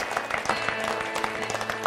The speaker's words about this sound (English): Can we give the Lord a big hand clap, church? Come on.